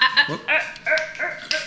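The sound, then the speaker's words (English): A dog barks repeatedly, a quick burst of five or so sharp, loud yaps in an uneven rhythm with barely a pause between them. “Pardon the canine interruption.”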